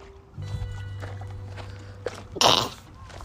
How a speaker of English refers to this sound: We'll keep that in because, you know, I was going to go to a commercial, but sometimes you have to sneeze.